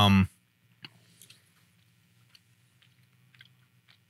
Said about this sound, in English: Pause for chewing. Here, yeah. Thanks, Hi Chu. Yeah, thanks, Hi Chu.